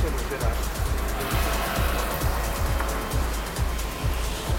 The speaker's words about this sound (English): And someone parking motor scooters. And there are probably 100 motor scooters parked on the sidewalk right now.